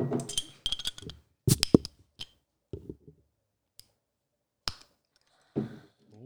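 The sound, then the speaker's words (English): Glasses of a Russian Imperial Stout cellared for 11 years clink together in a toast, a few bright, sharp taps scattered among softer handling knocks and brief low murmurs, with quiet gaps between. “Cheers. Cheers. Clink.”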